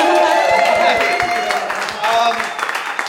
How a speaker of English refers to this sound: can you give him a quick round of applause?